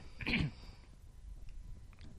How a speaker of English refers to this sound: You okay? You look like you're about to cough again.